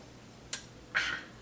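Two crisp clock sounds: a sharp tick, then, about half a second later, a slightly longer, rougher tock. No voices are heard.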